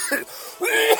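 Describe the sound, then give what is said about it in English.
A person coughs: a short hacking burst, a brief pause, then a longer, raspy, throaty cough. No words are spoken. “So, the more you cough with Crab Constellation cigarettes, the healthier you are.”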